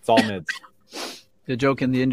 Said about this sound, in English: A little cough.